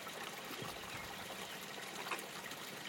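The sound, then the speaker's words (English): Steady, gentle trickling and lapping of river water against giant logs, a continuous soft splashing wash with small irregular bubbles and drips, even throughout, with no voices. “Listen as the water gently laps against these giant logs.”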